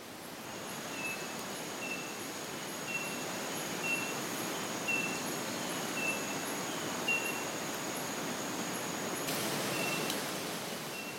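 A speckled mourner repeats a thin, high squeaking call about once a second, like a creaky swing, over a steady hiss of rainforest noise and a constant high insect whine.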